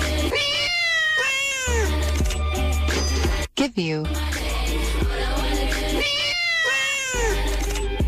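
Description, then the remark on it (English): A quick run of cat meows cuts in twice over a bass-heavy song, standing in for gunshots in the beat, with a woman's vocals carrying on between them. “All I want to do is give you a bunch of cats and give you money.”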